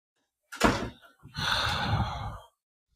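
A door shuts with a short, solid thump, followed by about a second of steady rushing, scraping noise, with no voices.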